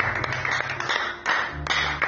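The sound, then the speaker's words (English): Several sharp hand claps from a young boy at a gospel preaching gathering land at an irregular pace over a dense, steady background of crowd noise and low hum, each clap crisp. “Even a young boy is clapping his hand.”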